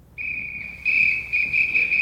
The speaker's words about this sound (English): Well, that sounds like a police whistle. That'd be a police dog.